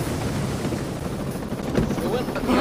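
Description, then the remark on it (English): A helicopter going down: its loud, steady rotor and engine roar fills the whole moment, continuous, with a brief voice faintly breaking through near the end. “Helicopter down.”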